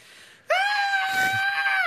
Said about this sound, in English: Oh, I yelled instead of do that.